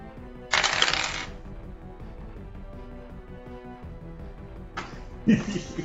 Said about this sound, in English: So I need you to roll a percent die. Okay.